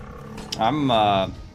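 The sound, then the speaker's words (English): A dinosaur, a Chiruka, lets out a single loud, pained roar as it is severed, a strained bellowing cry lasting under a second that swells and then cuts off abruptly. “you hear this dinosaur roar in pain and turn around and see this Chiruka get just absolutely severed.”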